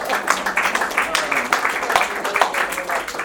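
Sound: audience applause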